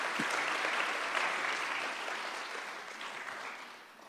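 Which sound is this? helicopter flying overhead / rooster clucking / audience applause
audience applause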